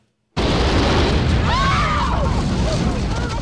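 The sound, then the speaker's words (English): A sudden loud explosion in a sewer, set off by a dropped match, bursts out of silence, then a heavy, sustained roar and rumble carries on, with faint rising and falling cries or whines audible within the din. “There's a flash of light and an explosion.”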